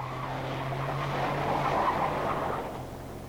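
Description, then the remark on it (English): A car engine hums low and steady while tires scrape and skid across the road in a loud swerve that eases off near the end, as the car is brought back onto the road. No one speaks. “After I got the car back into the road again, I felt like a fool.”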